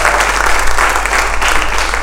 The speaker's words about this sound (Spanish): Y yo le doy un aplauso a los que están hoy aquí.